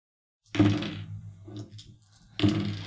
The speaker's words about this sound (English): I like the sound of all those dice.